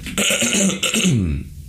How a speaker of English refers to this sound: People are going to be like, stop coughing on it.